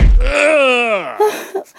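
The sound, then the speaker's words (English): A short, dull punch lands, followed at once by a man's long, drawn-out groan that sags downward in pitch, then a couple of brief, breathy gasps. “I only punched him.”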